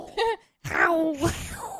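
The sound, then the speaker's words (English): Someone imitates a cougar's growl: a short voiced grunt, a brief pause, then a longer, wavering groan-like snarl that rises and falls, fairly loud. “That's a terrible cat.”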